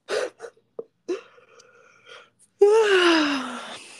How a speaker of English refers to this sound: Yeah. Sorry to be yawning.